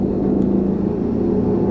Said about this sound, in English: Damn, do you hear that? That's a fucking helicopter, if you can guys hear that. Yeah, we're the part of, since I live so close to a hospital, it's like, I always feel that fucking helicopter, like, always shakes the apartment. It scares me.